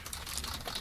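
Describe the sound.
A voice imitates computer keyboard typing heard during a phone call, with a quick, brief run of soft clicking and tapping noises, steady, lasting under a second.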